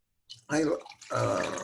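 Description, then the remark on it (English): A brownish-purple drink called Recess is poured into a container: a brief splash, then a steady, gurgling stream of liquid that runs for about a second, fairly loud. “I'm pouring this stuff in. It looks a little purpley, little browny. But I am going to drink it.”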